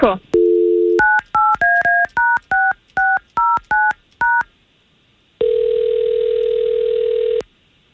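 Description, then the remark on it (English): A short dial tone, then about eleven quick touch-tone beeps as a man's phone number is punched in to call him, followed by a pause and one long steady ring on the line. “We're going to try to get him on the line and see if we can't find out what's going on with him, okay?”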